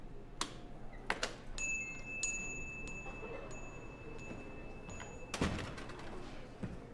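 A door opens with a few sharp clicks and rattles, a thin sustained ring hanging in the air, then a heavier thump as it swings shut against a quiet background, as a man comes in.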